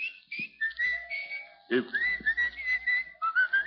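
Someone whistles a melodic tune nearby, with sliding pitched notes in short phrases that rise and fall, fairly clear and steady across a few seconds with faint background noise.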